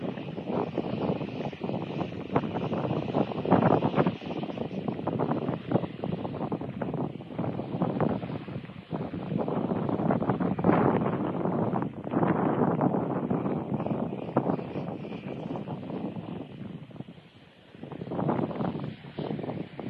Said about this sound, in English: And here's some of the footage of the winds. Not bad. In Colorado, a massive dust storm was moving through.